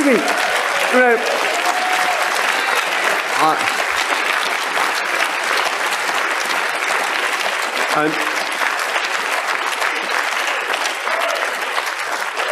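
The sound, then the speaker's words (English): A sustained round of applause from a large crowd, steady and loud throughout, with dense clapping and a few brief voices or calls rising above it. “I hope somebody will clip that as a round of applause for the good people of West Burton in Nottinghamshire for what they are managing to do for this nation.”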